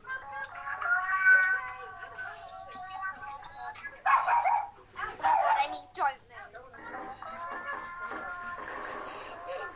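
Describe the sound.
A dog barks twice in quick, sharp bursts midway through, fairly close, while voices and steady background sound carry on before and after.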